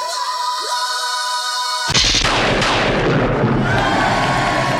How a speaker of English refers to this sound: Blood Explosion is the onomatopoeia of the week and the sound of... you guessed it, a blood explosion, as seen in the pages of Bolts number one.